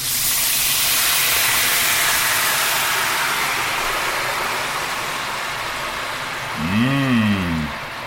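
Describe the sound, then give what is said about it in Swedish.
Dry white wine hits a hot pan to deglaze it after browning, with a loud, steady sizzle that slowly settles over several seconds, joined near the end by a brief warbling squeal. No one speaks. “Och nu ska vi ta tillvara på den smaken genom att deglacera pannan, ja, med vitt vin.”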